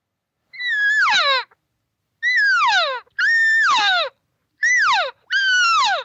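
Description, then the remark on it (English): Five loud, nasal cow calls imitated with a caller to call a bull over, each holding a high, whiny pitch before sliding sharply downward, spaced unevenly with short gaps between them and no talking. “I have to let him know, her, let the bull know that this cow heard this bull, and now she's looking for him and wants him to come over.”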